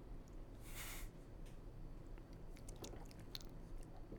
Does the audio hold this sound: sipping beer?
yes